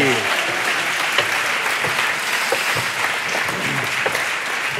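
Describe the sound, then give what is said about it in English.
A live audience at a show recording applauds in a steady, loud wash of clapping that holds for the whole stretch, dense and continuous with scattered sharper claps poking through. “Oh, a round of applause.”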